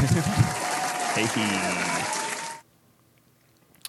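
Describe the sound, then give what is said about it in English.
A crowd applauds steadily and loudly with some voices mixed in, then the clapping cuts off suddenly at once, leaving near silence for the final seconds. “So yeah, that was an abrupt ending to that clap.”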